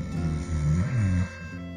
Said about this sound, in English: He resumed snoring.